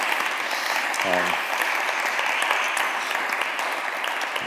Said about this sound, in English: Wonderful. Thanks so much, guys. Should we have a little round of applause for those guys? Well done.